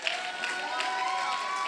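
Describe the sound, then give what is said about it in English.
An audience breaks into a steady round of applause for the Lord, a dense wash of many hands clapping at an even level, with a sustained keyboard tone humming underneath. “Can somebody give the Lord a round of applause?”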